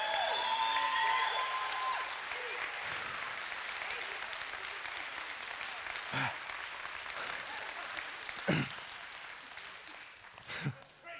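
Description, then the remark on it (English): A crowd applauds steadily for several seconds, the clapping dense and sustained, with a few whoops rising above it before it gradually thins out. “And it's scary to clap to that, but that is the God of the Bible, and that is how he made us.”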